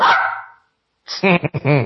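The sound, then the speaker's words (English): A dog barks: one loud bark that trails off, a short pause, then a quick run of three or four sharper, yappy barks. “Crazy dog.”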